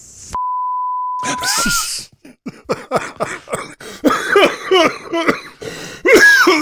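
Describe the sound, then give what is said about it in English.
A steady electronic beep sounds, then a person coughs and clears their throat repeatedly in a loud, rough series of hacking bursts and gravelly rasps. “Cough it up. Furball.”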